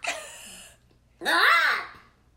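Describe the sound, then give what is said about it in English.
A human voice imitates a bird call in two loud, shrill bursts: a short, bright first cry, a brief pause, then a longer warbling call that swoops up and down in pitch. “You sound like a real bird.”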